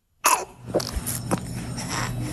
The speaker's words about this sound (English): A baby with trouble breathing. It's why this mom in Columbus, Ohio took her two-month-old to the hospital. He just declined super rapidly.